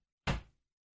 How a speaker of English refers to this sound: Damn, that was a sound. I don't even know what the heck that was. I think that was the server door creaking. And it somehow got picked up on the mic.